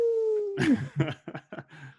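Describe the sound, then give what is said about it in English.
A voice imitates a wolf, holding a long howl that slides downward, then breaks into several short, loud yelping cries. “As promised, a lot of howls.”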